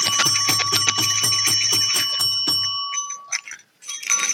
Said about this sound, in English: Let me bring out the holiday bell here.